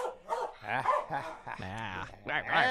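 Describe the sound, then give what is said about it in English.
A dog, Mahler, barks and yips in Studio A at KUCI 88.9 FM in Irvine, California, in several quick, pitchy bursts across a few seconds, some rising into whiny, drawn-out yelps. “And as always, an extremely stable genius, Mahler, the fake news dog.”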